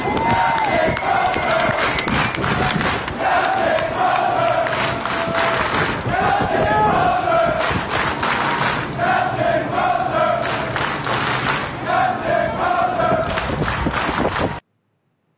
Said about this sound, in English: It showed hundreds of service members on the hangar deck of that ship chanting, "Captain Crozier, Captain Crozier," clapping. Here's a little audio of that moment.